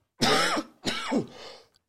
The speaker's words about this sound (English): Well, where the coughing increases, and then it kind of... Maybe it's... I think it's allergies. I was going to say seasonal.